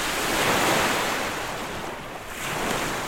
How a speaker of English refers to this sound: I got some pristine, beautiful sounds of the lake, especially when it was very active. It was windy, the waves are huge.